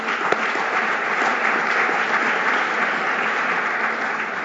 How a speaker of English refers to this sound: I would like to thank, in addition to our lead sponsor, IBC, our VIP sponsor, our VIP reception sponsor, I should say, CAA. Let's give them a round of applause as well.